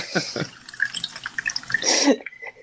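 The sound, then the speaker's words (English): A beverage is poured into a cup, a steady splashing trickle that swells briefly toward the end before fading out. “I am pouring more of a beverage. I'm not using the bathroom in case you can hear the liquid pouring.”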